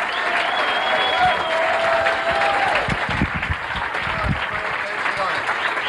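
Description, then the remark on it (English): An audience at a stand-up comedy show applauds steadily for comedian Frank Prinze at the end of his set, a dense wash of clapping that stays loud throughout, with a high whistle sounding over it early on and crowd voices mixed in. “Nice round of applause, Frank Prinze.”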